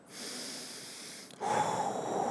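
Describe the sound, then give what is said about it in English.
A single deep breath: a long airy inhale, a brief pause, then a louder, fuller exhale rushing out. No one speaks. “Think about all the cellular processes that happen when you take a breath.”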